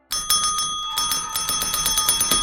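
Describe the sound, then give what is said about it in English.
A bell in an attic room rings rapidly and insistently at night, its bright metallic strikes repeating many times a second in a loud, continuous clatter, with no voices. “At first they heard a single ring. Then the bell began ringing furiously.”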